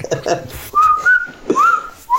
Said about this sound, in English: when that man whistles, I just want to drop my pants.